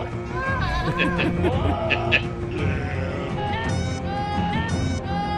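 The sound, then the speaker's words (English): A goat bleating sound effect: loud, wavering goat bleats repeat several times over a dense, busy background, with quivering cries that rise and fall in pitch across about five seconds. “Oh, the Game of Goats, baby. Game of Goats.”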